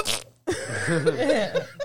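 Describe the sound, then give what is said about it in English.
A quick breathy, sneeze-like burst, then a fairly loud buzzing raspberry with a wobbling pitch, a voice imitating a fart for about a second and a half. “It's almost like a you sneezed and also farted.”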